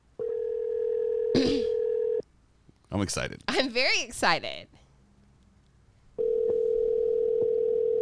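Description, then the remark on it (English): A phone's outgoing ringback tone, for a call placed live on air over Bluetooth, purrs in two long, steady rings separated by a pause of several seconds, while a voice talks excitedly in the gap between them. “Is it ringing? We're ringing right now.”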